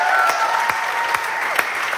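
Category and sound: crowd, audience applauding in welcome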